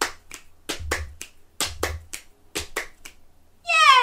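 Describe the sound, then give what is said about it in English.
Rhythmic body percussion repeats in a steady legs-hands-click cycle: dull thumping pats on the tops of the legs, sharper hand slaps and crisp finger clicks, ending with a brief high, tonal vocal sound. “Legs, hands, click. Can you do it a bit quicker?”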